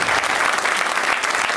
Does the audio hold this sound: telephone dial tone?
no